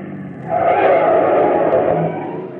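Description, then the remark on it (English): A car's brakes screech loudly for a second or two as it comes to a stop, a harsh sustained squeal over engine rumble that then drops back to a low idle. “Gotta get them brakes fixed.”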